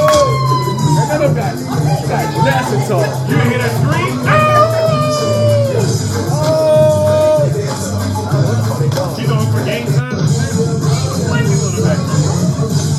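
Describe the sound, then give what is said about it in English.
Shrill, wavering screams rise and fall over a loud, dense crowd din, several overlapping cries stretching across the first half before the noise settles into a steady roar. “You hear that scream?”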